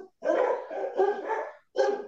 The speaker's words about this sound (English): None of us know what it's like to have barking dogs.